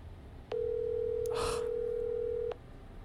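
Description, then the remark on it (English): A single steady electronic ringback tone sounds for about two seconds, the caller-side ring of an outgoing phone call to the caller's fiancée that goes unanswered. A brief rustling noise comes partway through, with quiet background before and after. “Ring, ring, ring. Answer the phone.”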